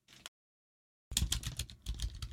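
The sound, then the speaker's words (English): Rapid, fairly loud clicking of a computer keyboard as someone types in the name Ruth Cadbury, with a brief burst, a pause of silence, then a steady run of keystrokes. “You typing in Ruth Cadbury crying.”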